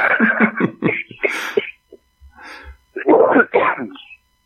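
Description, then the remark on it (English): A single harsh cough bursts out between stretches of a person talking, with a brief throat-clearing rasp just before it. “That's only one cough so far.”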